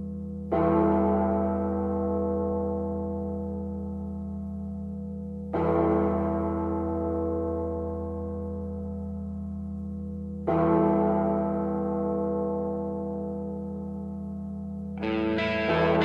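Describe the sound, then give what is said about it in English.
A deep, heavy bell tolls four times, each strike spaced about five seconds apart, ringing out loudly and slowly fading between strokes with a rich, lingering resonance, as the Ben and Woods show on sports station 97.3 The Fam returns live from Peoria, Arizona. No one speaks. “And as … toll, we welcome the Hall of Famer”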